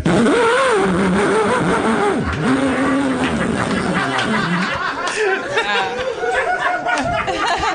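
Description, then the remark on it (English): A voice imitates a chainsaw with a loud, buzzing, continuous drone whose pitch swoops up and down like an engine revving, carrying on without a break for nearly eight seconds. “Chainsaw.”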